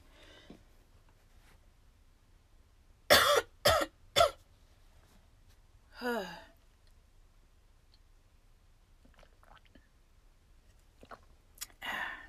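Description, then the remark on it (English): A quick burst of three sharp, loud coughs from a person who has been talking a lot, followed a few seconds later by a softer throaty cough or throat clearing, with quiet background otherwise. “I have to cough because, like, I'm just talking so much and it's just so aggravating.”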